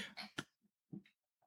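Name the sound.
coughing fit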